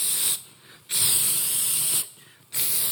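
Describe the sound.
A voice imitates an aerosol spray with sharp, bright hissing bursts, three spurts of varying length separated by brief pauses, fairly loud with no other talk.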